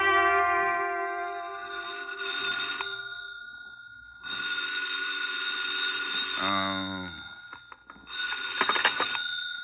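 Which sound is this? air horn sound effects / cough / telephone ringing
telephone ringing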